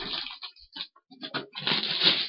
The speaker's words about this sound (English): I am ripping the paper now.